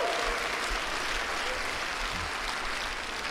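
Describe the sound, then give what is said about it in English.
An audience claps hands in sustained, dense applause, a steady wash of many overlapping claps at an even loudness for a few seconds with no speech. “Somebody ought to clap those hands.”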